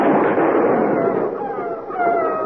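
A wolf's long, wavering howl rises out of a loud, rough burst of noise from a gunshot that only grazed the wolf, which was at a house's back window; the howl's thin tone draws out steadily toward the end.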